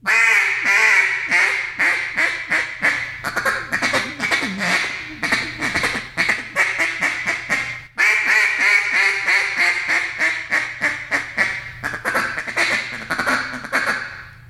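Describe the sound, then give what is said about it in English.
Loud hen-duck calling: a drawn-out string of bossy quacks (the boss hen call) sliding into rapid, rolling feed-call chatter, the sequence repeating twice with a brief break midway. No talking. “And just goes from that boss hen back to the feed call, from the boss hen back to the feed call.”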